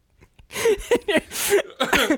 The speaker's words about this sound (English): I quit smoking 2 years ago, and I think I just coughed up like the last of the tar.